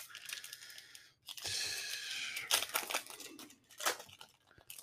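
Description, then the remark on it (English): A foil trading card booster pack, one of the last three packs, is torn open with bright, crinkly ripping, then the wrapper rustles and crackles in uneven bursts, with sharp snaps of tearing foil near the end. “Last three packs. Here we go.”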